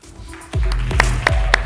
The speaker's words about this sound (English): Oh yes, we need your support with a round of applause. It's a hard place to be on a stage.